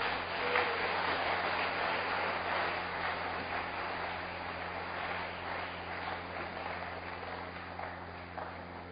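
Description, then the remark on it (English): A church audience claps steadily for several seconds as a clap offering to the Lord, a dense, continuous patter of many hands, with a low hum running underneath. “Give the Lord a wonderful clap offering.”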